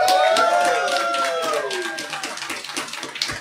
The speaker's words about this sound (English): These are, if I may interrupt, the three most interested-looking people I have seen in a panel. They're down for Atomic Robo. Let's see if, by some chance, these mics will pick up you guys cheering and applauding.